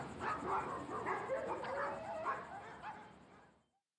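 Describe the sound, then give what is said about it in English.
Several dogs chained up in backyards in the area howl and yip together in an overlapping chorus, sustained wavering cries at moderate volume that carry on for a few seconds before abruptly cutting off into silence. “Then, every dog chained up in a backyard in the area starts howling.”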